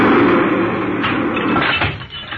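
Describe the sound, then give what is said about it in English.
A subway train rumbles past in a loud, continuous roar with rattling, clattering texture, holding steady for a couple of seconds before dipping slightly near the end. No voices are heard. “It's only the subway.”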